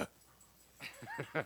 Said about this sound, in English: Puppy attack.